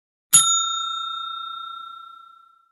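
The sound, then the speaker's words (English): A single bright bell ding, rung as a spoiler warning, with a sharp metallic strike, then a clear ringing tone that slowly fades over a couple of seconds. No voices, just the bell alone. “I'm going to spoiler this a little bit, guys. So if you want to, we're going to bell it here a bit.”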